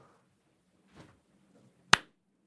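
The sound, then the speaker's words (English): A slow clap: two sharp hand claps about a second apart, the first soft and muffled, the second loud and crisp, with nothing else but quiet room tone. “That slow clap.”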